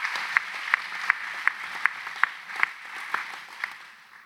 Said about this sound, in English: So one more round of applause for everyone here who's around you.